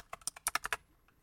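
A quick burst of about seven sharp, clacky keystrokes on a loud mechanical keyboard, close and crisp, then a brief pause and one softer key press, with no voices.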